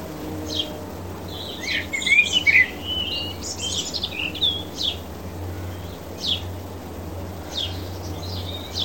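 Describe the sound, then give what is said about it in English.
Birds chirp and tweet in scattered bursts, high and bright, with a busier flurry of calls early on, over a steady low background hum; no voices. “Anyway, I love those birds. Weren't they great?”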